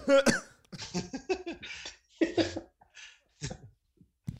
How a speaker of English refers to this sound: No, my mic was off. It's not recorded. All right, so he's coughing, but they can hear me coughing.